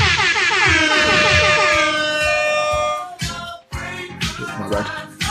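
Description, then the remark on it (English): Loud, blaring air horn blasts fill the first three seconds with a sustained brassy tone, followed by a few shorter, choppier horn bursts as the sound breaks up. “More air horns there.”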